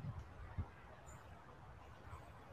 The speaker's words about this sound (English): Notice the sounds, birds,